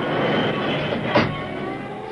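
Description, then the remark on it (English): A railroad car hits a stretch of sanded rails and grinds to a stop, sparks flying from its wheels as it loses speed. It makes a dense, rumbling roar with faint thin squealing tones, and a brief harsh scrape flares up partway through before the steady grinding noise carries on. “Sparks flew from the wheels as it lost speed. Inches from disaster, it came to a grinding stop.”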